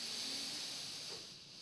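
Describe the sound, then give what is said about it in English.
A long, deep breath drawn in, heard as a soft, steady airy hiss that holds for over a second and eases off slightly at the end, with no talking. “A big, deep breath. Draw all the air into your lungs until the capacity.”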